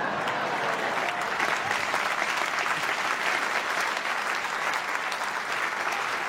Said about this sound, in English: Oh, they're going to clap.